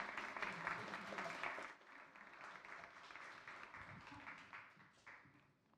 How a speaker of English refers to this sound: Let's give them a warm round of applause as they come.